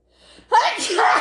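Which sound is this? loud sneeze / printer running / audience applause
loud sneeze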